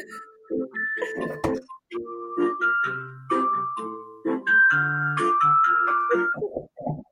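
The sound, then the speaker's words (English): An alarm plays a bright, chiming melody of bell-like notes that step up and down in pitch, sounding steadily for several seconds with brief gaps and no voices. “There's this alarm going off behind me.”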